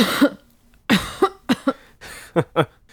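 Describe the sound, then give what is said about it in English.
A woman coughs in a rough, hacking fit after drawing on a cigarette outside a house at night: several harsh bursts coming in uneven clusters, with short raspy breaths between them and no talking. “She managed not to cough on the second drag”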